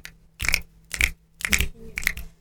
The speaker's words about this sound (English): Then snap your fingers.